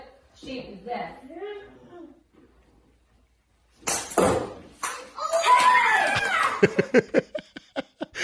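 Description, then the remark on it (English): After a short quiet pause, a sharp thump as a ball hits a mother is followed by children's high-pitched screams, then a quick run of loud, rapid footsteps as the kids run upstairs. An adult voice speaks briefly at the start. “The kids screamed and started running upstairs.”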